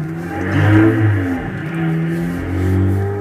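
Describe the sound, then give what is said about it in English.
A small car engine in a 1962 film revs and accelerates, its steady mid-pitched drone rising and falling in a couple of surges with no one talking. “What is that car? I like that car.”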